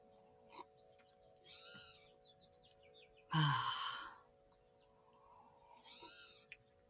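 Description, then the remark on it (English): Chimes ring and linger as a steady, sustained tone across the whole clip, while birds chirp now and then and a brief, loud breathy rush passes midway. “That sound of the chimes lingering in the air is the same as the feeling of caffeine hitting my bloodstream.”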